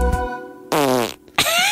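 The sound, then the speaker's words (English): A loud, bought professional fart sound effect in three quick bursts, the middle one long and wobbling downward in pitch, with no voices around it. “I like that you didn't record your own fart noise. You bought it like a professional one.”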